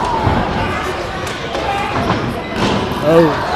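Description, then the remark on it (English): Several heavy thuds of wrestlers slammed onto a ring mat with a belly-to-back move at the packed, standing-room-only Elite Sportsplex, booming over a constant murmur of crowd noise with voices mixed in. “belly to back”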